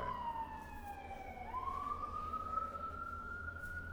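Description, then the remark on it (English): An emergency vehicle siren wails outside, its pitch sliding down and then climbing again over a steady low traffic rumble, with no one speaking. “Sirens again.”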